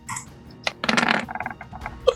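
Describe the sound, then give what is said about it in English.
Dice rolled for an attack clatter across a hard surface in a quick burst of rattling clicks, tumbling and bouncing several times before settling on a 7, a miss; fairly loud with no talking. “17 to hit. 7 on the dice.”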